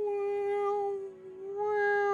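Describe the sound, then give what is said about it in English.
A glass dome cat lets out one long, loud yowl like an alarm going off, a steady siren-like wail that dips briefly in the middle before swelling back up, with no other sounds around it. “It's one of them dome cats. Alarm going off.”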